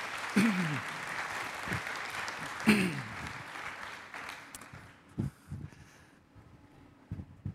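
A crowd claps steadily for several seconds, a dense patter of many hands, then the applause thins out and fades into a few scattered claps, with brief voices rising over it.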